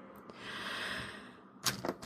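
Someone tries the handle of a locked door to a room off a hallway: a soft rushing sound, then two or three quick clicks and clunks as the handle rattles without opening. Fairly quiet, no talking.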